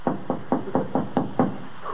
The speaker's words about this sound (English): Shall we knock? They do.